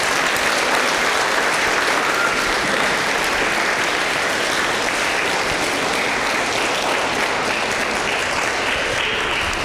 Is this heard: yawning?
no